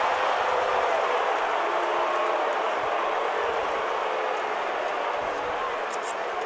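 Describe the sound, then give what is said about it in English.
A large arena crowd at a basketball game roars in disapproval after a referee's foul call on Dinwiddie, a dense, steady wall of voices that stays loud and unbroken throughout, with no single speaker standing out. “Crowd doesn't like the call.”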